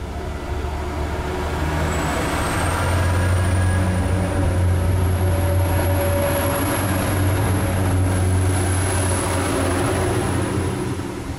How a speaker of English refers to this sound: The pump has now stopped humming for the second time. Are both our locomotives watered?